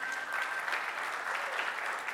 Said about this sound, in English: Number one, the playground isn't complete, but it is open. That'd been a great place to clap right there.